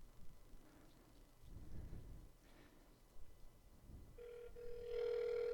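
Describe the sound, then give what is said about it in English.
Low muffled rumbling and thumps, then a steady electronic ringback tone on a phone line as a toll-free number is called live, loud and continuous, with no one talking. “And I'm sorry if there's some cell phone interference in this part, but we're going to call this number live.”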